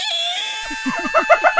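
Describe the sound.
A voice mimics the Boylston Station subway screech of a train's brakes: a thin, sustained high whine that breaks into a run of quick, rhythmic squealing pulses, growing louder toward the end.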